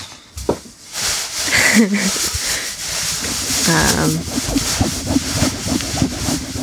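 Paper being rustled and crinkled for several seconds, a continuous scratchy, crackling texture with irregular sharper crunches, moderately loud, with brief murmured vocal sounds mixed in.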